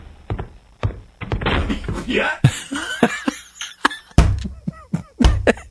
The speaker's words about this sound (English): He opened the door, and he just kept walking.